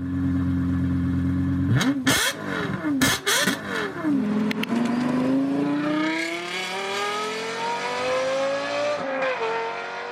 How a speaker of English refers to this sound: Well, I know that you love the sound of cars, and we actually have here a clip of one of your favorite cars accelerating. This is the Lexus LFA.